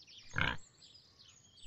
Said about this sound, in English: When she was out of her cage and in the field, she planted her hoofs firmly in the ground, looked squarely at the brown pigs, and grunted a pleasant, good-natured grunt.